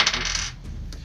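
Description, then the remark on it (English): A die, rolled to hit in a tabletop game without a dice tray, clatters and rattles across a hard table surface for about half a second, then settles, with a couple of faint ticks afterward; fairly loud, no voices. “Dugan the Rebel not using a dice tray.”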